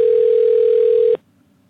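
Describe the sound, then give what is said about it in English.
A single steady telephone ringing tone buzzes over the line for just over a second while a call is placed to a man's phone, then cuts off abruptly, leaving only faint line hiss. “Okay, ma'am, can you hear it ringing?”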